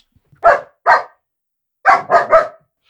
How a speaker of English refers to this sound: She's got a very high-pitched bark. She has very bark lady. Like a lady. Very lady. She does bark like a lady. She barks like a lady.